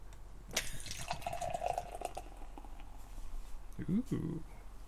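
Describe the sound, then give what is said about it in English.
An 8.3% Imperial red beer pours from a 32-ounce crowler into a glass in a steady stream that rises in pitch as it fills, then trails off; a short voiced exclamation follows near the end. “And the pour.”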